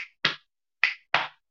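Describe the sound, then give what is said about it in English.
Sharp percussive body sounds in a quick pattern: a tail of one, then three crisp chest hits, finger snaps and claps spaced unevenly, each a bright slap that fades fast, with no voices. “So we have first two parts, which is hit, snap, clap, snap, hit, snap, hit, clap. One more time. 1, 2, 3. Hit, snap, clap.”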